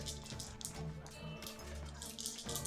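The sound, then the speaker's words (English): Dice rattle and clatter together in a cupped hand, shaken for a dexterity saving throw in a tabletop role-playing game, a steady stream of bright clicking in irregular bursts for a few seconds, with no talking. “Yeah, as you can hear the jiggling of dice in my hand.”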